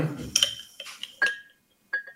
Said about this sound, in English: Take the lid off. And then we're going to add about 2 tablespoons of broccoli seeds to our jar.